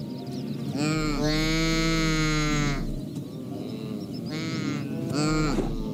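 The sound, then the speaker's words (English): A saiga antelope calls, loud and nasal, with one long, drawn-out, brassy bleat followed by two shorter ones. There is no talking. “But to me, it sounds like a sheep bleeding into a trombone.”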